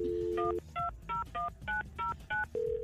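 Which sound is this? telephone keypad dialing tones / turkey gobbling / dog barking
telephone keypad dialing tones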